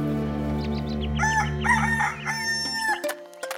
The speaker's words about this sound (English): We roosters are naturally proud creatures, but you know, it is an important job being the personal alarm clock of the high priest of God's people.